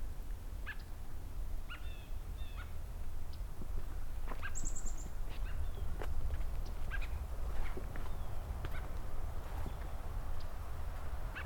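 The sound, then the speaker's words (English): Scattered calls of American robins calling to each other: short chirps and a brief clear whistle trading back and forth over steady low outdoor rumble, with no one talking. “So while a little quiet here right now, I've got some American robins talking to each other.”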